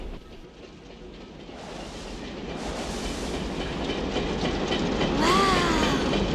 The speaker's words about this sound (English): and you hear the steady rhythm of the train